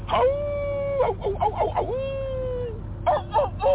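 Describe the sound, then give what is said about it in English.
A rooster crowing sound effect, with choppy syllables leading into one long drawn-out high note, then a few shorter broken calls at the end, loud over a low steady hum. “No, I said a wolf, not a rooster.”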